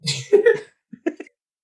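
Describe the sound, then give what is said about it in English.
A single sharp sneeze bursts out, a hissy rush followed by a voiced snap, then a moment of quiet and a few soft vocal sounds. “God bless you, everyone.”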